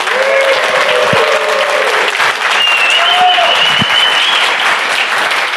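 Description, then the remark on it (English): A room full of people claps loudly and steadily for Apprenda, the supplier of the evening's dinner, a dense, continuous wash of applause with a few faint whistles rising over it, sustained throughout without any talking. “And let's give them a great big round of applause.”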